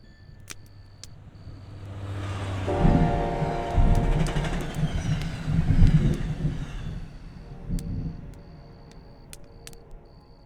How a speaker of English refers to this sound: If you put your ear to the railroad track, you can hear the sound of train wheels thundering hundreds of miles away.